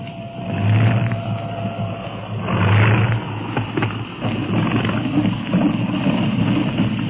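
A steady, droning airplane engine hums continuously as the plane is set down to land, with low rumbling tones that swell twice and rough, rattling texture throughout; no one speaks.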